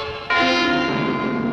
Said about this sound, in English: This is no ordinary train.